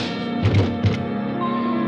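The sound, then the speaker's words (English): A punch lands with a heavy, dull thump, and a second low thud follows as a body hits the floor, both over a steady, humming musical backdrop with no talking. “Why is it that people who telegraph their punches are always the first to start swinging?”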